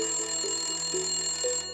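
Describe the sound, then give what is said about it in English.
A landline telephone rings steadily, its bright electronic trill repeating in quick regular pulses at moderate volume, with no voices. “George began receiving mysterious phone calls on his private landline.”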